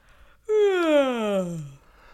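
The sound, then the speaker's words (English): A single drawn-out vocal yawn, fairly loud, its voiced tone sliding steadily downward in pitch over about a second, with no talking around it. “Your yawn's like almost toe into like chewy territory. That was a real one.”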